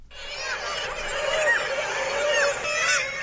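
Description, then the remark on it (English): Parasitic jaegers (Stercorarius parasiticus), gull relatives, calling in a steady, overlapping chorus of nasal, wailing cries, loud, with no pauses across the few seconds. “Answer, when its name is Stercorarius parasiticus, or the parasitic Jaeger.”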